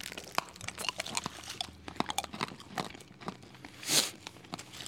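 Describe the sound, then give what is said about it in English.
Hard seaside rock candy, billed as fish and chip flavoured, being bitten and crunched: a steady run of sharp, brittle cracks and crackles with a louder grinding burst near the end, and no talking. “So this is billed as fish and chip flavoured rock.”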